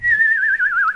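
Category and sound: human body sound, person whistling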